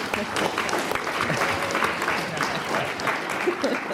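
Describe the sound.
Steady applause from an audience fills the whole four seconds, a dense wash of many hands clapping at an even level, with a faint murmur of voices mixed in.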